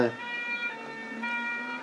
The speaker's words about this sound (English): Bloody Sherpa van is an ambulance.